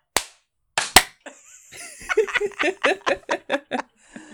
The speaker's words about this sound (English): Is that not what clapping is? No, but we all do it at all the same time. We go one, two, just three. One clap.